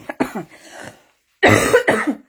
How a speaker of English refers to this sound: I told you that I will be coughing. I did warn you on the start of this life, because this cough doesn't let me go separately without cough.